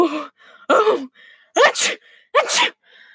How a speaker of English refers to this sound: The wolf went on sneezing for several minutes